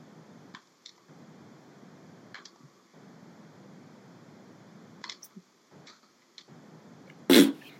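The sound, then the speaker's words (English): Near the end, one short, loud, sputtering fart noise made with the mouth bursts out, after several seconds of quiet background with a few faint clicks. “That was a fart. That was a fart with my mouth.”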